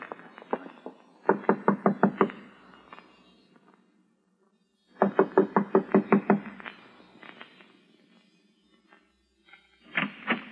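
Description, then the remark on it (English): Firm knocking on a door in three separate bursts of quick, evenly spaced raps, each burst a handful of loud blows with short pauses of quiet between them. “I'm going to knock on the door now and keep smiling to show we're friendly and let me do all the talking.”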